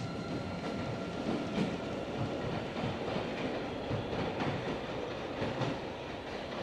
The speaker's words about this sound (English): And early in the morning I was sleeping and I was dreaming of … playing a drum solo. See him here. And as I woke up, it was the sound of the subway going by is what he was playing.